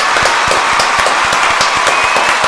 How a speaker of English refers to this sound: We have given away 20 awards tonight. How about a round of applause for the show?